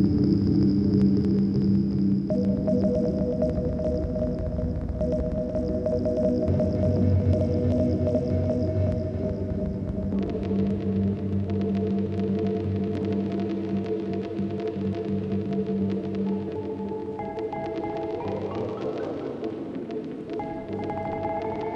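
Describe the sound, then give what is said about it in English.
A dense wash of reverberant synth tones: short sequenced samples from the Steps, played through a reverb pedal and smeared into a steady, throbbing drone that shifts pitch and texture every few seconds. Loud, with no voices. “This reverb pedal is so nice.”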